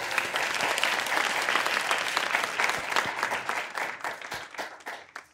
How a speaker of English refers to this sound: Everyone, could you please join me in a round of applause